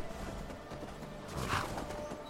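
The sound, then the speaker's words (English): Soft clip-clop of horse hooves, a few uneven steps, set against a steady, dense background ambience with no talking. “So now that those saber cats are taken care of, we're going to leave the horse here.”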